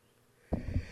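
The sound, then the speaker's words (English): A single abrupt sneeze bursts out after a brief quiet moment, with a short breathy, snorting tail trailing off afterward. “Bless you.”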